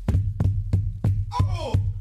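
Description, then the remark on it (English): Heavy knocking on a door: five dull, evenly spaced thuds in a quick steady rhythm over a low hum, with a brief voice cutting in near the last knocks. “Oh, who that? Open the fucking door, man.”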